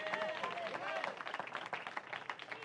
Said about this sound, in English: Clap your hands if you believe that tonight.